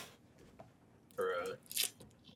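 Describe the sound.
A single sneeze: a short voiced intake rising into a sharp, hissy burst, moderately loud against a quiet, faintly murmuring background.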